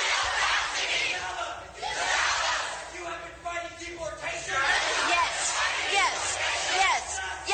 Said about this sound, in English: Nancy Pelosi. Why is everybody booing? Why is everybody booing?